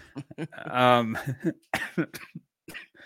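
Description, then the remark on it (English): Someone breaks into a coughing fit: a strained, throaty hack followed by several sharp, harsh coughs in quick uneven bursts, with brief pauses between. “don't die during a cough drop. Don't die. I need like the cough button.”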